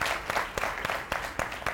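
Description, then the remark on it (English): An audience applauds a man on his birthday in a steady, dense wash of overlapping claps, with a few sharper individual claps standing out. No one speaks over it, and it holds at an even level throughout. “Can we clap for him, y'all?”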